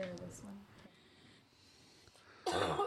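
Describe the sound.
A brief murmur of a voice opens, followed by a quiet pause, then a single loud, harsh cough bursts out at the very end.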